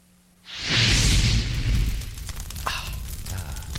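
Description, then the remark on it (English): A fire ignites with a sudden loud whoosh and low roar, then settles into a steady rushing burn scattered with sharp crackles and pops. “I love the crackling. Toasty.”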